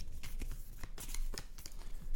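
A quick shuffle of playing cards handed in by players during a game round, so the shuffler doesn't know who gave which: a rapid string of crisp, papery flicks and snaps, fairly soft, with no talking over it.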